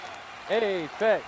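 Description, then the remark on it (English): Two loud, falling voiced cheers rise over a steady, hissing wash of crowd noise, like an audience whooping and applauding in quick bursts as Apex Lugia is named the winner. “The crowd really likes Apex Lugia.”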